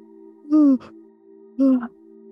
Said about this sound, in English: And together we're just going to have a yawn.